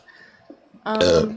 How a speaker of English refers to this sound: Oh gosh, pardon me, I did not mean to burp into the microphone, I'm sorry.